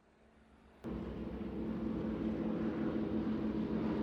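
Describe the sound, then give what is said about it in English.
After a brief hush, the heavy roar of twin-engine B-18 bomber planes flying overhead from the north near the American airbase Camp Hay kicks in abruptly and holds steady, a loud, throbbing engine drone with no voices. “Boy, those planes are loud. Yeah, sounds like they're coming from the north.”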